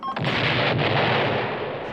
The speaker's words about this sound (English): And plucks a feather from Dark's head and picks the lock, but the door explodes?